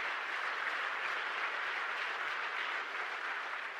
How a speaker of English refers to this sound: In Psalm 133, yeah, give the Lord a clap offering for that.